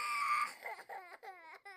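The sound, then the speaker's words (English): A child cries inside a village house at night in a run of high, wavering wails, starting with one long sustained cry and breaking into several shorter sobbing bursts with falling pitch, fairly loud and with no talking. “When he got close to the house, he realized it was a crying child.”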